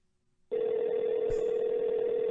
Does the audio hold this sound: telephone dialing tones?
yes